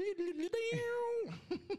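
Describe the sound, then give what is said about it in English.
A person imitates a cat's meow as a clue for Thundercats: a few short mewing calls, one long drawn-out meow that slides down at the end, then two quick yowls, fairly loud. “You did the cat thing.”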